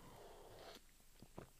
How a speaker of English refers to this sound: So number one, I'm going to get a sip of coffee for this one though.